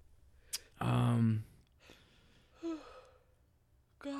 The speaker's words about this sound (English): All of a sudden, the yawns are hitting me hard. You motherfucker got me.